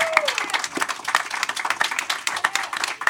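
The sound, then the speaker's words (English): A crowd claps steadily for Tyus Bowser and Patrick Queen with dense, crackling applause, mixed with scattered shouts and a brief whistle, holding an even loudness for about three seconds. “Y'all make some more noise for Tyus Bowser and Patrick Queen, please.”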